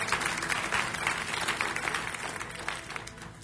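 Many people applauding together for the team up front, a dense, steady patter of many hands clapping for a few seconds that tapers slightly toward the end.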